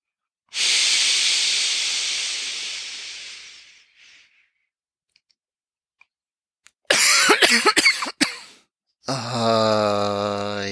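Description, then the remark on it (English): A long, breathy exhale fades out, then after a pause comes a burst of several harsh, rapid coughs, followed by a drawn-out voiced groan. “If you need to cough, if you need to shiver, if you need to cry, squeeze it all out.”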